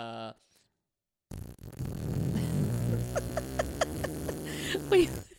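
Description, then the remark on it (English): A short hum, a pause, then a voice imitates a noisy heater: a steady rumbling, hissing drone with harmonics, dotted with squeaky clicks and chirps that rise toward the end. “Please do the noise of the heater.”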